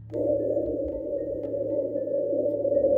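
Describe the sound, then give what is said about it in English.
A steady, hollow rush of wind breezing past, low and droning with a faint echoing quality, seeming to come from no particular direction. It holds an even level throughout, with no voices. “The only thing you hear and feel down here is a little bit of some wind just kind of breezing past you all in like a...”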